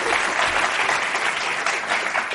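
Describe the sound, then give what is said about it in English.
Steady, dense applause from an audience in the Bay Area welcoming panelists, a continuous wash of many hands clapping at an even, fairly loud level with no break and no voices over it. “I'm going to leave it at that and let you all have a dialogue, but let's just welcome them with a hand clap, and thank you all of you for being here as well.”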